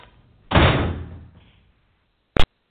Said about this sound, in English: The healer snatches up several pairs of toe shoes and rushes out the door, kicking the door closed behind her.